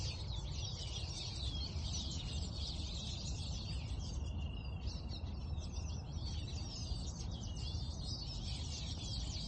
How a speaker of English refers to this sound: all of a sudden I walked up to this tree, and there was no joke, like, about 100 yellow birds, little finches, in this tree. You'll see them. I don't know, this is, you can hear them.